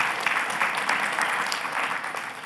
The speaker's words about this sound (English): Well, let's go ahead and give our speakers a round of applause, you guys. Thank you, guys.